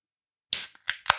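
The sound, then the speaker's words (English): A drink can made in Ireland cracks open with a sharp pop and a brief bright hiss of fizz, followed by two quick clicks of the tab or metal. There's no talking. “Can's open. Nice little bit of fizz.”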